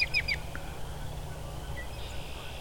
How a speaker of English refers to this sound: I can hear some Canadian geese, too. Well, Canada geese, but...